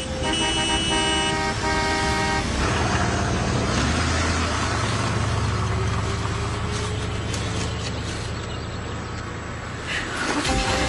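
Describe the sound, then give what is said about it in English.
A car horn blares with a steady, harmonic tone at the start over loud, continuous road and engine rumble, as a vehicle keeps driving for several more seconds. “I thought riding in a car would be more fun.”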